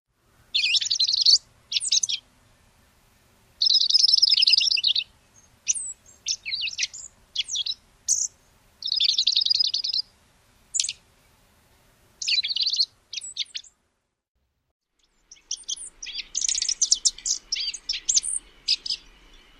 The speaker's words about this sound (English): Dark-eyed juncals can also sing a quiet, varied warbling phrases in early spring. Here's an example of that.